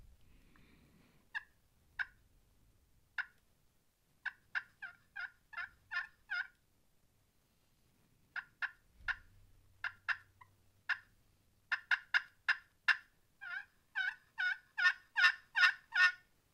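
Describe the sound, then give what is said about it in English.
Sharp turkey calls ring out alone: a hunter's scattered hen yelps build into a fast, loud run of cutting as a male turkey's gobble breaks in over the calling near the end, cutting off the call. “If he's really hot, he'll gobble back to that right in the middle of my call. He'll cut me off when I'm calling.”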